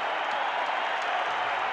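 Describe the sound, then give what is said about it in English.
A big basketball arena crowd of just under 19,911, on its feet, roars and applauds in a steady, dense wash of noise that holds at full strength for the whole moment, with no single voice standing out. “O'Neal telling the crowd to get on their feet, and they do as told.”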